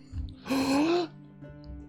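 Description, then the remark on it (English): A single loud, drawn-out theatrical gasp by a voice playing a character, rising slightly in pitch and lasting about half a second, with quiet room sound before and after. “Lady Bethany is going to gasp.”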